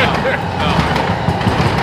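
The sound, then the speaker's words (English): A train rolls past with a steady, heavy rumble and a broad roaring wash of noise that holds level throughout, with muffled voices underneath. “There's a train.”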